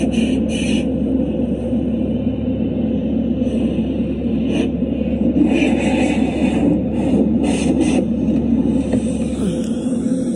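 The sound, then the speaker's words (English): From inside a car in an automatic car wash: a steady, heavy mechanical rumble, with bursts of hissing spray and swishing brushes coming and going. Nobody speaks. “He loves to go with me to wash the car. Because he knows, I don't wash it. I just let the tornado washer do it, as I call it.”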